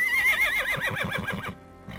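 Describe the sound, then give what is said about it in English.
A horse whinnies loudly, a quavering, high-pitched call that wavers rapidly and slides downward before fading out, with no talking over it. “His nice, firm haunches. Well, they're a mark of a good horse, certainly.”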